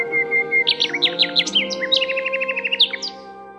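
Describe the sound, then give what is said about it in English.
A nightingale sings a bright, varied song of quick chirps, swooping whistles and a rapid run of repeated notes, clear over a soft, steady background drone. “The nightingale started singing.”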